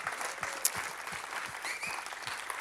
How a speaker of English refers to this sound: And we say goodbye from Zurich. And let's give a big shout of applause to all the 80 locations.